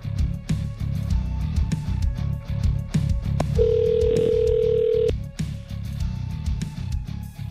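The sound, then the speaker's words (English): A phone is dialed to make an outside call, first dialing one, over a steady low hum: scattered button clicks, then a single sustained electronic tone for about a second and a half before more faint clicks follow. “Just have to dial one. Hold on. I got to make a call.”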